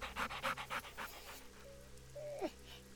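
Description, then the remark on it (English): A dog sitting up with its tongue lolling pants rapidly and rhythmically for about a second and a half beside a boy, then quiets, followed by a faint high whine. No one speaks. “Boomer has his arms wrapped around Toby, who sits up, tongue lolling thirstily by his young master's side.”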